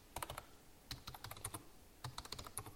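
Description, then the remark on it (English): Rapid clicking of keys on a computer keyboard as someone types up a post on Twitter, irregular bursts of taps with a brief pause in the middle, fairly quiet, no voices. “I mean, I'm actually typing this up on Twitter now.”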